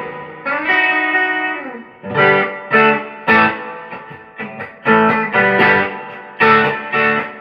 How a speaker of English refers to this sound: That's all the reverb I want out of that thing, really. Yeah, that's amazing, man. Sounds great.